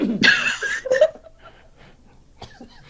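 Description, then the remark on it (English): A harsh cough bursts out loudly, followed by a second shorter hack, then trails off into quieter breathy sounds and a faint final rasp. “There's no precious bits over here, and I have that precious bits cough.”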